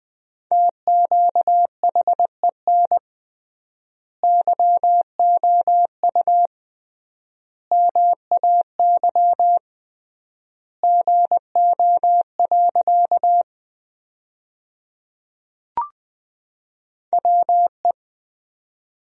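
Morse code sent as a steady mid-pitched tone at about 20 words per minute, sending sentences built from the top 100 words, short dots and longer dashes grouped into words separated by long pauses of triple word spacing, with one brief click near the end.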